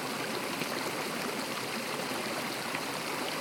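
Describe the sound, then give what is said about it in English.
One of the main waterfalls in a series cascading down a mountain at the Garden of Eden in the Pikes Peak region of the Rocky Mountains, Colorado, rushes in a steady, dense white noise, water pouring continuously without pause, full-bodied, with no voices. “You're hearing one of the main waterfalls, but there are a handful that have a variety of sound profiles, from loud cave reverberations, bassy ground vibrations, to small trickles and drips.”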